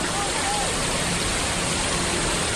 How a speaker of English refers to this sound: The year was 1894, and the flash flood came rushing down Clear Creek Canyon and into the town.